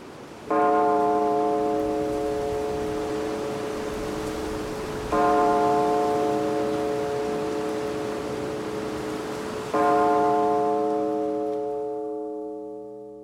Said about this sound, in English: He heard a snatch of sound, some far distant church bell signifying the midnight hour was upon them.